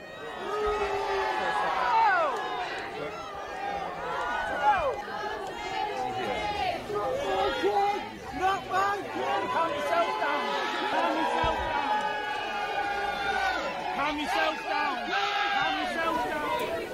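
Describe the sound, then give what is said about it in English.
A large outdoor crowd boos and shouts at a man who threw eggs at King Charles, some yelling God save the king, many voices overlapping into a loud, continuous roar of jeers that holds steady across the whole stretch without pause. “And then, you can hear people boo. It's from people that are booing the egg thrower, not the king.”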